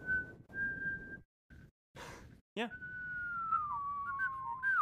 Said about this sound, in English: I just recently actually learned how to whistle and I can only do one note. Really? Yeah. And even trying to just get that one note out, it still takes me a sec.